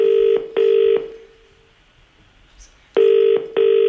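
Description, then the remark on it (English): A telephone ringing tone heard down the line as a call is made to a store: two double-burst rings, the second pair arriving after a pause of nearly two seconds. Loud and steady, with no voices. “He's ringing some stores.”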